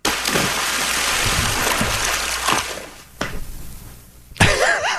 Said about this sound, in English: For those who need a sound effect, yeah. To picture what that would be like. Thank you, …. Good splash. Theater of the mind.